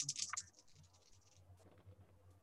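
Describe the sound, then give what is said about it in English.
A quick burst of sharp clicks and clatter as three dice tumble across a hard surface, then a softer, scattered rattle fading under a low background hum. No one speaks. “And could I get you, Ghazi, to roll on just your empathy? Ooh. Okay. Three dice.”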